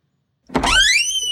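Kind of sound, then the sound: household object, door opening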